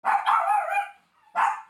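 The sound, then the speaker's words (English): A dog barks three times, loud: a short bark, a longer drawn-out one, then a pause before a final bark. No one is talking. “We've got a dog barking interval.”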